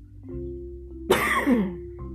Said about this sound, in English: Excuse me, I have a little cough in my throat. It's chilly out here. It's winter.